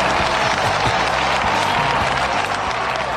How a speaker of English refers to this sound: So glad to have you here. Oh, raucous applause. Thank you. Thank you very much. Thank you.